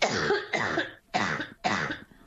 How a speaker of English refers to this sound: raspy cough as she lay in her North Shore hospital bed after being diagnosed with COVID-19 10 months ago. She struggled to catch a breath as she spoke